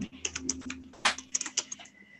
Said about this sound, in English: Kristen's typing away looking for meat names.